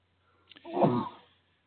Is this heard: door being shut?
no